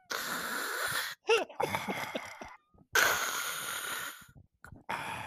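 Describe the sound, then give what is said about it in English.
A voice imitates the labored breathing of a person on a respirator: several long, raspy, hissing breaths in and out, separated by brief pauses, fairly loud, with no talking. “But what they do on top of that while they're going through this is there's the sound of very labored breathing of a person on like a respirator.”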